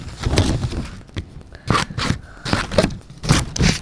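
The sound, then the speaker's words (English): Elementary school-style scissors cut through material in a series of crisp, scratchy snips, the strokes coming in an uneven rhythm with a low rustle between them and no talking. “Good old elementary scissors.”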